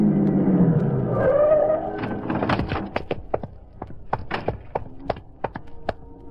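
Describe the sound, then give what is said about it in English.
A big black sedan's engine rumbles and revs as it is driven across town, its pitch climbing for about two seconds, then fades into a run of sharp, irregular knocks and taps. No one speaks. “I found my way out of the warehouse, climbed in the big black sedan, and drove across town to the block that ran into River Street.”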